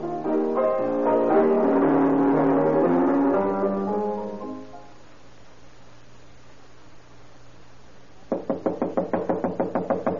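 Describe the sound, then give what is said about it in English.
Music plays and fades out, followed by a quiet stretch, then a burst of fast, heavy pounding on a door, a dozen or so loud blows in quick succession, as someone demands that the person inside get up and open the door. “Get up and open this door.”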